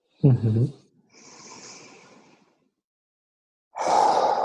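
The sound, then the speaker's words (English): A brief voiced sound, then a long, steady breath drawn in, a short pause, and a loud, forceful exhale rushing out, the third complete breath of a breathing practice. “And actually on this third complete breath, I am more forceful about it because I'm breathing in strength and I'm breathing out gratefulness for the strength.”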